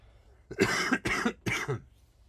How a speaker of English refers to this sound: Sorry for the coughing.